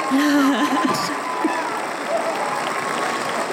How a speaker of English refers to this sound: Perfect score. Let's let the crowd keep cheering.